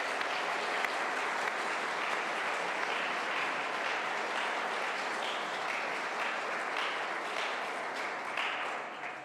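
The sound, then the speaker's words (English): An audience applauds the boys and girls for their singing, poetry, reading and prayers, many hands clapping together in a dense, sustained burst that holds at an even level for several seconds before beginning to fade. “We'll give you a round of applause again, because that was super.”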